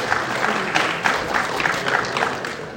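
Audience applause: a dense, steady patter of many hands clapping at moderate loudness, with faint bursts of individual claps standing out, lasting a few seconds without voices.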